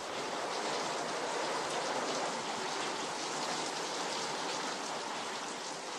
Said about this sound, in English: The man today has a melancholy weakness for the comforting whisper of crickets and frogs, tropical rain against zinc roofs, and nights turning to rivers.